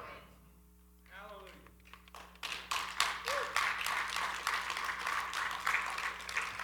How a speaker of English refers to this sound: You know, if I was playing football and you give me a pitiful little clap like that, I'd go to the sidelines and I'd take my helmet off. If you're going to clap, clap.